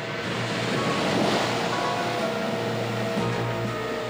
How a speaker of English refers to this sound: Waves crash against the coast with enough energy to turn over cars and destroy buildings.